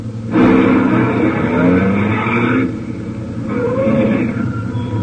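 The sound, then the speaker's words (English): A heavy truck engine rumbles loudly, its drone shifting pitch as it comes around a curve in the road, easing off briefly as it stops before the motor swells again. “In fact, we take the one now coming around the curve.”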